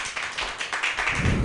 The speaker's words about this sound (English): Applause break for hot sauce, good man, I like this room.